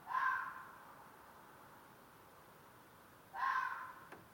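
Two loud fox calls, each a brief harsh mid-pitched cry, separated by about three seconds of quiet background hiss. No one speaks.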